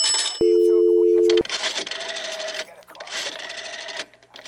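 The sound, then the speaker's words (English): A bus token drops into a wall payphone, setting off a steady electronic tone for about a second, followed by bursts of rapid mechanical whirring and clicking as a number is dialed. “Where's the phone? On the wall there, Mr. Bell, where it usually is.”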